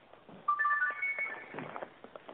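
A mobile phone ringtone plays a short rising melody of clear electronic tones, fairly loud, during a live radio broadcast, then fades into faint background murmur and rustling.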